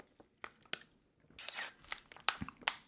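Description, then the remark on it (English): Two people take sips of their beverages: quiet sipping and swallowing noises, a scattering of small wet clicks, a brief slurping swell in the middle, then a few more gulps, with no talking. “I mean, we both chose a dope moment to take a sip of our beverages.”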